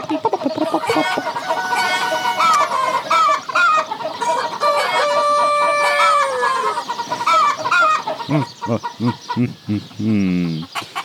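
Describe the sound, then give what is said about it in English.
A rooster crows loudly over a flock of clucking chickens, followed by a run of quick clucks near the end. No one speaks. “That's how I feed my chickens every day.”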